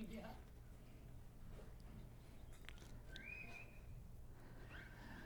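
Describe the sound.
A brief high-pitched microphone feedback whistle from a live mic rises out of a steady low hum and fades within about a second, with faint voices in the background, during a church worship service.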